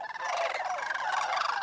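A loud, continuous chorus of sandhill crane calls, many overlapping rolling, rattling bugles from several birds at once, filling the whole moment with no speech.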